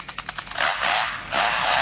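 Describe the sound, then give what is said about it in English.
A lyrebird mimics a chainsaw: a few quick, sputtering bursts build into a loud, harsh, sustained buzzing whine that briefly dips and then surges again, with no talking. “play the bird doing a chainsaw.”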